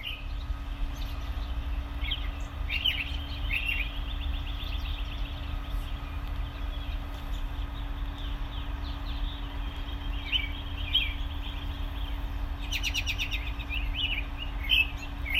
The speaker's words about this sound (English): That was Robins on a Winter Day in southern Indiana.